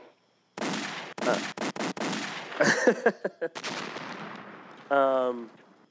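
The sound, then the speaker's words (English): A rapid string of sharp fireworks bangs and pops goes off outside at a home, some in quick bursts, followed by a rumbling crackle and a brief tonal whine near the end. “So, and who the hell is doing fireworks here?”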